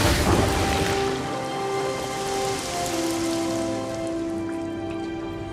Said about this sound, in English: So they shoot down this deep well here to break open, hopefully, water for these planet species that have, you know, they already mentioned it. There's a drought. And now there's a big gush of water.